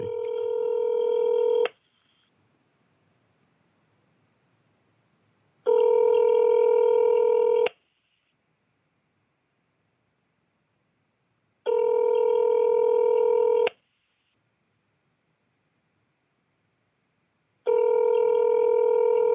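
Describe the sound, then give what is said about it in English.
A phone line rings on an outgoing call placed on speakerphone: four steady, buzzy ringback tones, each about two seconds long, separated by roughly four-second silences. No one speaks. “That's way too many rings.”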